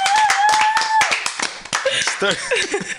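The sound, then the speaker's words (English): A crowd claps loudly in a dense, steady patter, with a sharp whistle early on and whoops and cheering voices rising over the applause toward the end. “Let's give it a round of applause, everybody.”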